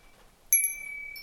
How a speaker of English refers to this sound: It's not real windy, but it's a nice breeze blowing through. So you can hear a lot of these wind chimes. But yeah, beautiful.